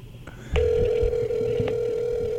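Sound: outgoing phone call ringing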